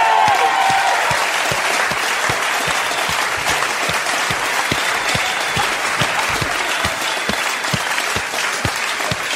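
A crowd applauds steadily for the whole stretch, a dense wash of many hands clapping at an even, loud level, with a few sharper individual claps standing out.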